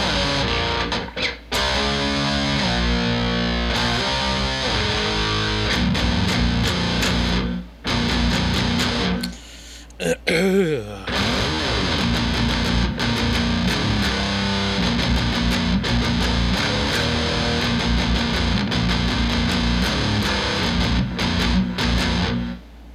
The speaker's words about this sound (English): The guitar that I'm playing right now, was gifted to your boy,